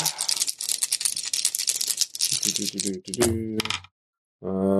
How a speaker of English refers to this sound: I guess I'll just roll the 5 dice. See how we get.